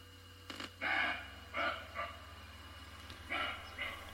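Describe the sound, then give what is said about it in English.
A series of short, hoarse bark calls from a roe deer, about five in irregular succession, fairly loud, over a steady low electrical hum. “The roe bark.”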